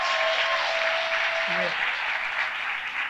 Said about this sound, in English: Let's clap it up for this man, for us.